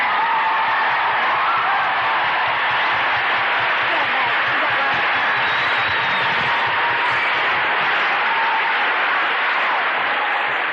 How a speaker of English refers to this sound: Not too much applause. I've only got an hour.